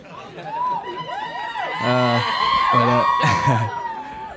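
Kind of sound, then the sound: crowd, audience screaming and cheering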